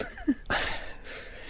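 A yawn: a sudden, breathy rush of air that swells and lingers for about a second, preceded by a brief faint vocal squeak, with no talking.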